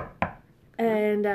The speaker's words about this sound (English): It's actually, I'm going to knock on some wood here.